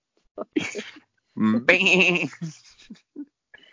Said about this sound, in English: Well, unfortunately, I believe it's sheep. Okay, well, I had goat, but we'll accept sheep.